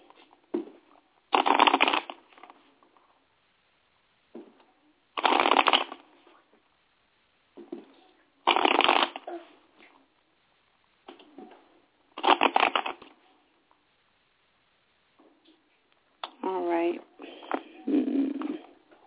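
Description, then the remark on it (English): Tarot cards are shuffled to draw a daily card, in several loud, riffling bursts separated by quiet pauses, with a soft murmuring voice near the end. “So I'm going to shuffle.”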